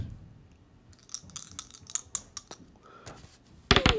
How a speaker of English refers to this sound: So, oops, I'm rolling the wrong dice. So we're going to roll a D100, see what they get on the fate table.